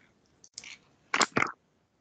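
A small metallic click and brief hiss as a drink can is opened, followed by two short, sharp crackling bursts, all fairly quiet with no talking.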